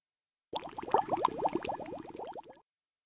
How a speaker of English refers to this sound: I volunteered. To wash dishes. Yeah. Yeah, get to work.